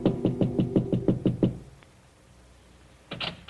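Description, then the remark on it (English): A quick run of about eight light, evenly spaced knocks on an apartment door in the evening, then a short silence before two more muffled raps follow. “Then as he prepares a drink, there is a soft knock at his door.”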